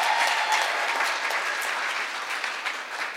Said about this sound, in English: But if we could give him a massive one, I know he'll hear it wherever he is. So yeah, if we could give a big round of applause, Charlie.